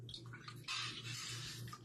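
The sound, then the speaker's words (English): A fish that was squeezed like a sponge is put back into water with a soft splash, followed by a second or so of sloshing and trickling water, fairly quiet, with no voices. “Put it back in the water.”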